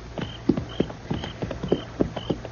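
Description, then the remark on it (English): Horse hooves clip-clop in a steady, even rhythm at an easy walking pace as riders move along on horseback, each hoof strike crisp. No voices are heard. “When we get there, I'm going to ride fast. I'll hang on to the offside of my horse for cover.”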